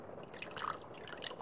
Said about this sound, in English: She lifted a bottle of vodka and poured more into her glass.